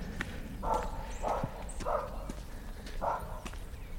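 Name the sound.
dog barking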